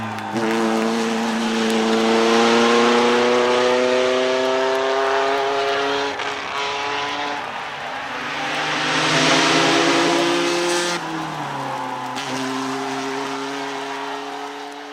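Racing car engines in the Tatra race roar and whine through the dangerous hairpin bends at Wodogrzmoty Mickiewicza, their pitch climbing and dropping repeatedly as they accelerate and brake, with a loud, sustained rev throughout and no voices.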